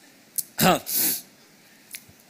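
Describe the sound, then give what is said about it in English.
A single loud sneeze from a speaker who has also just coughed: a sharp voiced burst that trails into a rushing breathy hiss, followed by a brief faint sniff or throat sound. “Excuse me, now I've coughed and I've sneezed.”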